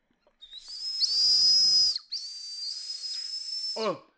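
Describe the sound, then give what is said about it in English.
Two sustained, high-pitched breathy whistles blown through a pink, strawberry-flavoured Polo mint sweet held in the mouth, the first slightly wavering and the second steadier, with airy hiss underneath and a brief falling squeak at the end. “I'm going to put this in my mouth and see if I can get it whistling.”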